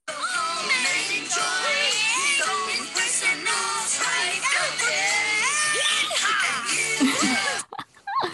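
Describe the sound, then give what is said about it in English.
Many voices sing and shout at once in overlapping, clashing pitches, everybody singing a different tone, with shrill screams and whoops, including a screamed "Yeehaw!" whose voice breaks, rising over the noisy, loud, chaotic chorus before it cuts off abruptly near the end. “Just the chaos and everybody singing a different tone”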